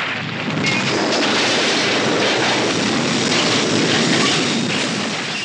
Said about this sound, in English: We must have a train crash clip somewhere.